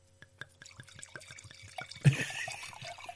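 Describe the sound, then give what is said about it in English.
Red wine being poured into a glass: a few soft drips and glugs, then a louder splashing rush of liquid that settles into a steady, trickling pour. “Bit more wine.”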